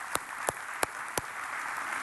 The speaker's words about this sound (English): worth an applause. You're about to get another one too, because it'd be easy for us in the tension that we feel with this election to forget that this Friday is Veterans Day.